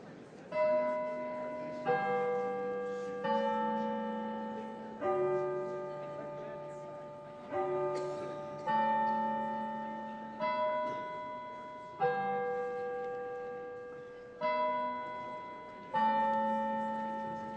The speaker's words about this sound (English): I'm going to ring the bells.